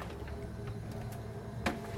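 A steady low electrical hum from a refrigerator, picked up by a microphone, drones on without a break, with faint background noise and a single soft click near the end.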